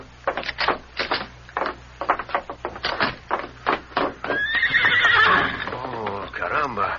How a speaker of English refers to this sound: Where would a boy get such a beautiful horse as this? Finest I've ever seen.